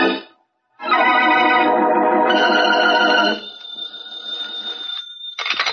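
A telephone bell rings in one loud, buzzing burst of about two and a half seconds, then lingers as a fading metallic hum before a short second jangle begins at the end.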